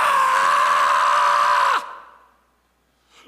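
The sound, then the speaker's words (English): A single loud, strained scream held for almost two seconds and then cut off abruptly, leaving a short fading tail; a voice imitating a woman's anguished screaming in travail during intercessory prayer. “I'm talking about that loud screaming.”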